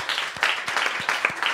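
A brief round of applause: many hands clapping at once, blending into a dense, steady crackle with occasional sharper claps standing out, and no voices.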